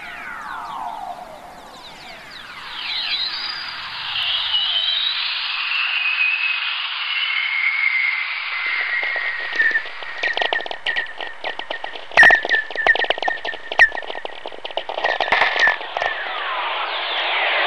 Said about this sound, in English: There are several million lightning strikes a day on the planet, which means there's a constant chorus of whistlers in the atmosphere around Earth.